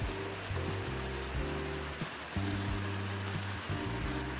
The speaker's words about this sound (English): The point is, I guess you can say, as you hear the rain start here in Hiram, Georgia, is that we are caught in a very bad conundrum.